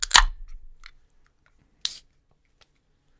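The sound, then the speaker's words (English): A Pumpkin Spice Latte English Stout beer being opened: a sharp crack with a brief fizzing hiss, then quiet, then a second short snap or rustle of the container. No one speaks. “Let's, by the way, listener, if you have something that you're taking a sip on, here, let me go open mine.”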